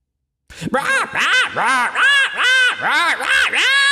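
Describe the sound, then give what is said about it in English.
Several voices imitate quacking birds in a loud, overlapping chorus of nasal, arching quacks, repeated rapidly for a few seconds. “And from here, the mic goes to a flock of wrathful psychic bird ghosts.”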